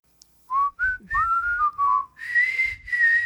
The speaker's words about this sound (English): But my whistle here, listen. That is awful. It's rough. That is the worst whistle I have ever heard. That just sounds like a whistle. Oh, okay. I mean, it's a little breathy.